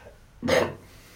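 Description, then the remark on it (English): A single sudden, stifled burp that came out as the person sat up straight, a short muffled throaty burst lasting under half a second that rises abruptly out of near silence and fades quickly. “That was a ninja burp. It snuck up on me.”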